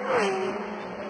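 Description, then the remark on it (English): The two leading race cars scream through Eau Rouge on the circuit, the pitch sliding downward as they go by, loud over a steady wash of engine noise in a brief burst. “Through Eau Rouge go the top two cars.”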